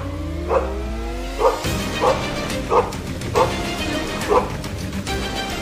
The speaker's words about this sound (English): I'm also a canine handler. Here's my dog, Kraken. Release the Kraken!